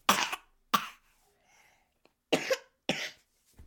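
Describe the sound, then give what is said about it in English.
Four sharp, harsh coughs in two pairs from a person sick with a cough, fairly loud, with brief quiet gaps between them and no talking. “I didn't go to school today because I have a cough.”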